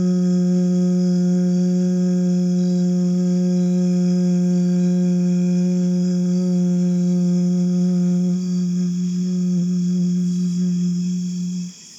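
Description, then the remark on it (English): A single long, steady vocal hum held at one low pitch for the whole breath, full, fading out abruptly at the very end, made by a person exhaling after a deep breath in during a guided breathing exercise. “And as you exhale, you're going to kind of create like a hum.”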